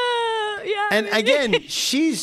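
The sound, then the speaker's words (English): A baby lets out a long, piercing high-pitched screech, then breaks into a string of squealing, wavering cries and a final shrill yelp, loud and harsh throughout. “That one sounds like a pterodactyl going into the kill.”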